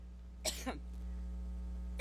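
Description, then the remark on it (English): Hillary, trying to give a speech, gives one harsh, fairly loud cough, followed by a faint second one and the start of another, over a steady low electrical hum with no talking. “This is Hillary trying to give a speech, and she's coughing.”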